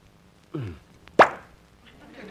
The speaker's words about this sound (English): did you just open a bottle of brandy? Why, yes.